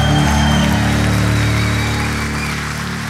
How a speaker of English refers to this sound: Clap like you believe it's God's will for victory.